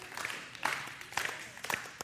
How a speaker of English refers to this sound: So clap your hands. That's a part of it. There are lots of ways. Yeah. Woo! Clap your hands. Yep. So clapping your hands is a way.